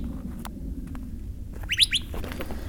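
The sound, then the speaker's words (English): A few bright bird chirps ring out at dawn in a desert with saguaro cacti, over a steady low rumble of outdoor ambience, with a quick cluster of sharp calls near the end, not loud. “In the dim light, there are birds everywhere.”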